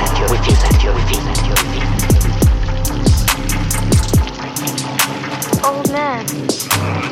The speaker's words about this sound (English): Close your eyes. What do you hear? I hear the water.